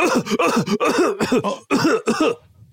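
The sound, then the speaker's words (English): A person in a school classroom lets out a rapid string of loud, raspy coughs, about seven hacking bursts in a row with throaty, voiced edges, trailing off into quiet at the end. “I'm not disrupting you, stupid bitch. I'm coughing.”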